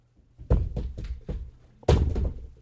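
A water bottle is dropped: a quick run of four dull, hollow thunks, then a louder clattering thud with a brief rattle as it settles. No one speaks.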